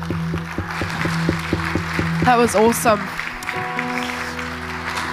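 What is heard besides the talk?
audience applause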